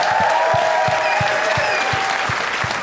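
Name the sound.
audience applause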